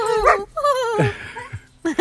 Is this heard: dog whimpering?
yes